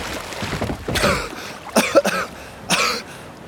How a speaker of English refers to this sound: Are you okay? I coughed. I'm all right.